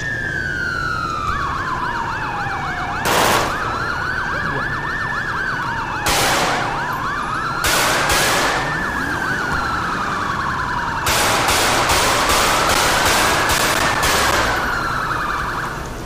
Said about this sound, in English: Why can I not turn on my sirens?